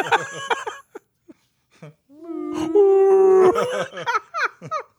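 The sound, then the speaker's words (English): Several voices join in a vocal imitation of whale song, rising into a long, wavering, overlapping moan before breaking off, with chatter and laughter around it. “I like how we all went to whale song in unison.”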